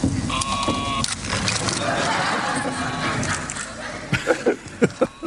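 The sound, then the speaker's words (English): A mechanical toy, a wooden box with holes in it, lets out a wavering, sheep-like bleat amid a dense, rattling whir as it runs around a room, followed by a run of sharp wooden clicks and knocks near the end. “It was a wooden box with some holes on it and giving this sheep sound and running around the room.”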